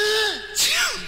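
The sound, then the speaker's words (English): A single sneeze: a drawn-out voiced 'ah' that slides downward, then a sudden loud, hissing burst, followed by a brief falling vocal tail. No talking around it. “Gesundheit.”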